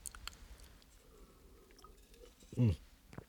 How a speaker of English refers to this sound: You'll have to forgive me. Anybody who talks this much, eventually needs a drink of water.